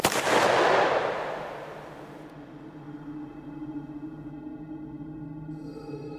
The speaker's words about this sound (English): Followed by a gunshot.